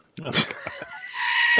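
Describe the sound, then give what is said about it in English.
A screaming goat toy lets out a loud, strained goat bleat that rises into a sustained, piercing scream, lasting about a second and a half. “Good morning, and I am also joined by my screaming goat.”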